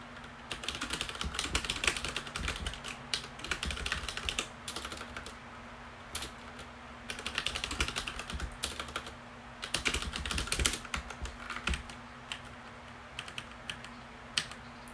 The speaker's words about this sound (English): I'm typing out something on Parallels Desktop, which is a virtualization.